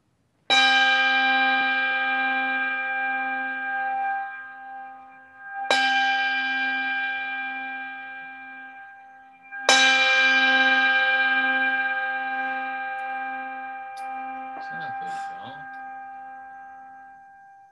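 A church bell is rung three times to begin a worship service, each loud, rich strike ringing out and slowly fading before the next, with a faint voice murmuring near the end.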